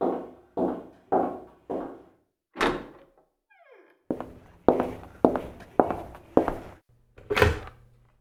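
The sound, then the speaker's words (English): Heavy, evenly spaced thuds like footsteps, a brief creaking squeal as the front door swings open, more steps, then a solid thump as the front door shuts. No one speaks. “Did you hear that? What? The front door.”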